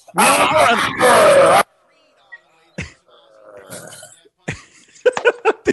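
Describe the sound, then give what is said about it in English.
A loud, raw primal scream as a vocal warm-up blasts out for about a second and a half, then breaks off into quieter grunts, mouth clicks and short, strained vocal bursts. “Is primal scream therapy?”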